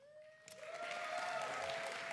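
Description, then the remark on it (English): The Gateway audience breaks into applause after a brief quiet moment, the clapping quickly swelling into a dense, steady roar, with a faint sustained tone humming underneath. “Gateway applauds.”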